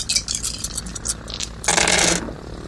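Dice rattle with quick, bright clicks for about a second and a half, then tumble and scrape across a hard surface in a louder, short burst before settling, rolled for a pilot check in a game and landing on 8. No one speaks.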